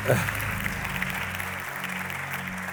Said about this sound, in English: Oh, come on, clap hands for Jesus, man.